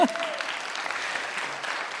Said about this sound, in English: Oh, my gosh. I'm still applauding for you.